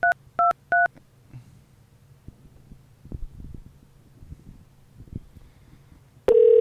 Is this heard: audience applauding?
no